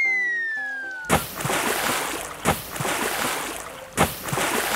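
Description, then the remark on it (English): Three loud splashes as children leap one after another from the top of a rock into water, evenly spaced about a second and a half apart, with steady sloshing and churning between them, preceded by a short descending musical tone. “Saying this, the children climbed onto the top of a rock and began to leap into the water one after the other.”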